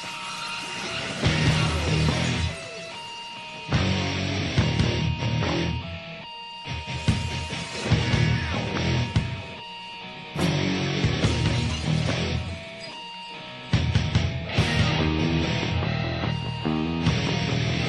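A loud, dense rock-style wrestling entrance theme, used for Austin for one night on WWF Raw on July 23rd, 2001, plays on its own, with heavy driving instrumentation that cuts out in brief stop-start breaks every few seconds before crashing back in.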